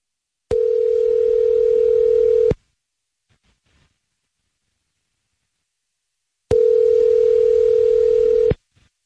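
A telephone dial tone on an outgoing call: a steady, loud electronic hum sounds for about two seconds, falls silent for several seconds, then repeats once, with no voices.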